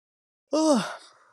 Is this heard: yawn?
yes